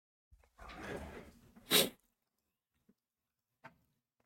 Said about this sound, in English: I got a sneeze coming too.